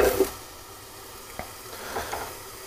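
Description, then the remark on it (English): A steady, hissing sizzle of a cheese toastie frying and steaming in a pan with the lid on, with a brighter burst at the start and a few soft pops and crackles scattered through. “It's the wonders of steaming your toasties, folks.”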